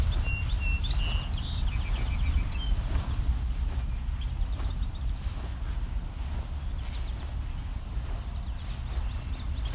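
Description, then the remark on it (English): Song sparrow and Savannah sparrow songs, thin trilled phrases and buzzy notes heard mostly in the first few seconds, then faintly again later, over a steady low rumble of outdoor background noise. “So you can hear both song sparrow and Savannah sparrow here. Very similar songs.”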